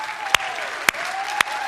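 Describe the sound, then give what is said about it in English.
A crowd at the Kearney campus claps for graduates in a dense, continuous wash of applause, with three sharper, louder bursts standing out at roughly half-second intervals. “Otherwise, can we just give it a round of applause for our graduates?”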